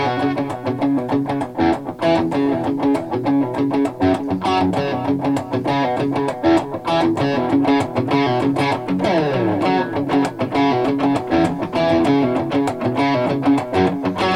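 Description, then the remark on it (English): Gritty, distorted electric guitar stab chords at the beginning of a song hit in short, chopped stabs, repeating in a steady rhythm over a driving bass groove. Loud and upfront, with no voices. “That's got a real Indian vibe, like to the, in the beginning, kind of like with the stab chords. It goes gunk, gunk, gunk.”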